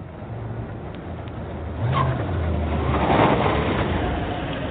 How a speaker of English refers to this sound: In the house on Juniper Avenue. Outside, a big silver car arrives.